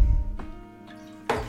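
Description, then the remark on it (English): About 2 ounces of gin pours and splashes into a cocktail shaker with ice, with a steady trickle, a brief splash partway through, and a louder gush near the end, moderately loud with no talking. “is now adding the gin”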